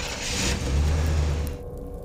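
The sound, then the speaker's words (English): A car engine revs up with a low, rising rumble as the vehicle pulls away, loud at first, then fading slightly over about two seconds. No talking. “I think my car's still out here! Come on, let's hop in the car! And we'll get out!”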